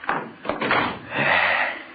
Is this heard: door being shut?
yes